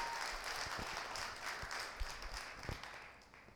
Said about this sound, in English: Let's clap it up for Jordan real quick. Thanks, Jordy, for our team.